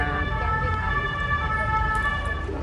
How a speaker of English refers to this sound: Oh, the city of sirens. I know. Paris.